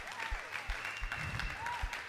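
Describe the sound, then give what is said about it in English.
A crowd breaks into steady applause, many hands clapping in a dense, continuous patter with a few louder low thumps, and faint voices rising and falling beneath it. “Hey, let's give a big clap to those people.”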